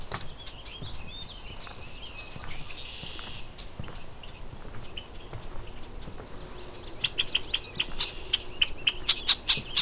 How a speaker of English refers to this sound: Unhappy red-winged blackbird. Kind of flying around my head a bit.